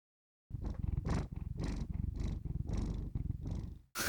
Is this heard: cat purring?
yes